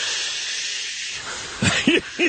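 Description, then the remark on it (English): A steady, airy hiss of an oxygen tank runs throughout, heard when he weighs in at the end of a 5 o'clock show, then three short, louder breathy puffs follow in a loose rhythm near the end. No one speaks. “Right, you would hear the oxygen tank. Oh, yeah, the worst. It was that loud.”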